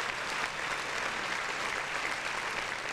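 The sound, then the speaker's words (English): Steady, dense clapping from a crowd, a continuous crackling wash of many hands that holds at an even loudness for the full few seconds, with no voices over it. “Round of applause.”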